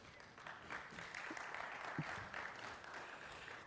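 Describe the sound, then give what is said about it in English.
A church audience breaks into a steady round of applause for the people who led the morning service, a dense wash of clapping that holds at an even level for several seconds, with a few faint voices mixed in. “Let's give them a round of applause leading us this morning.”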